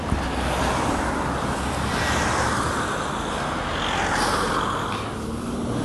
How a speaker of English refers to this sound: I've just got a local bus come to halt in front of me.